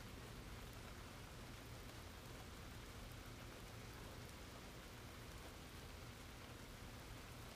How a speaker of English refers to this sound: It's raining. Oh, finally. Do you hear those frogs out there? And it is lightning. Maybe we'll hear the thunder in a minute.